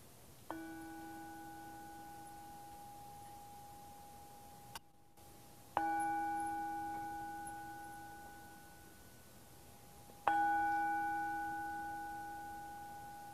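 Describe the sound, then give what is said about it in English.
A small hand bell, rung to close with a prayer, rings three times, about five seconds apart, each clear, bright tone ringing on and slowly fading before the next strike. No one speaks. “Oh, I brought my little bell.”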